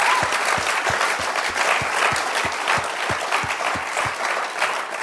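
Steady audience applause, dense clapping from many hands with a few sharper, rhythmic claps standing out, loud and sustained throughout without any talking.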